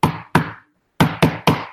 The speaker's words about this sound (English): you hear the knock, which is...